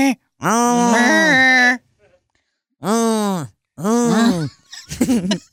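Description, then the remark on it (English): Four loud snoring sounds with a strong droning, groan-like voiced quality, spaced by short pauses. The first is long and the rest shorter, with no talking. “God, that snore is just pathetic.”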